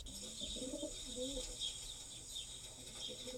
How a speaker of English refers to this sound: This species was used by humans as messengers. Here's an example of the homing pigeon call.